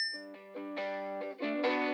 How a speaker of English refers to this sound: We cut to a shot inside the store looking out through the front door as Penny pushes through and we hear the little bell ding.